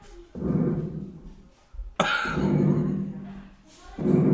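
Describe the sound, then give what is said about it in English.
Low, buzzy fart sound effects played on a show and turned way up: a softer rasp, then a louder, longer blast that starts with a sharp crack, and another beginning at the end. No talking. “That's like a little fart shit. You need a big fart shit.”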